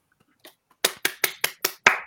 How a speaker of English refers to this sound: All right, guys, can I get a round of applause?